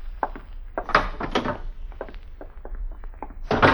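A door being opened, with a series of wooden thunks, knocks and clattering handling sounds over a few seconds, ending in a louder rattling burst. No one speaks.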